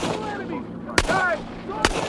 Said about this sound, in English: Patton fired his trusted Colt at the departing planes, his blood boiling.